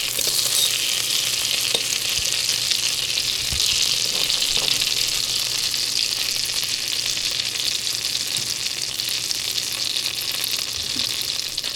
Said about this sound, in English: There was onions sizzling in butter.